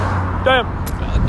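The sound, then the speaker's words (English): Steady roadside traffic, a continuous rumble and hiss of many cars going by, fairly loud, with a brief voice-like tone cutting in partway through. “I'll wait. There are a lot of cars.”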